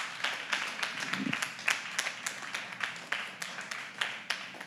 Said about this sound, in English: Can we give God a hand clap of praise in this place?